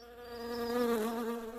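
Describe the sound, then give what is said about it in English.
A honeybee buzzes around a hive in a steady, droning hum, its pitch sagging briefly as it passes before steadying again. No voices, just the insect's continuous buzz for under two seconds. “I think just watching the bees is some of the best part.”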